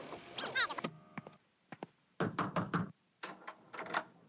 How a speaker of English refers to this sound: knocked on our door.